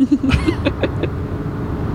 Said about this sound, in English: We're still in the goddamn car.